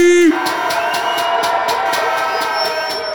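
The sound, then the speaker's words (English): A crowd cheers and roars loudly and continuously for DJ Ipe, a dense wash of shouts and whoops with rhythmic pulses underneath, opening with a brief held tone. “Oi, one more time, make some bomba clock noise for Mr. DJ Ipe.”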